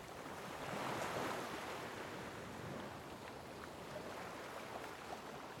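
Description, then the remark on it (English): Ocean surf crashes and washes in a steady roar on a winter day, waves breaking continuously with a slight swell in intensity near the start, wind rushing underneath, with no voices present. “with anyone who would like to join them, and together they charge into the surf.”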